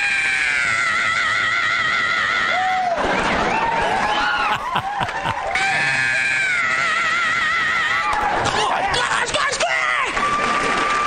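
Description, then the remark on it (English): A voice imitates a shrill heavy metal scream: two long, sustained, wavering high-pitched wails, loud, separated by a brief rougher vocal burst. “He come out with his leather pants on and just scream.”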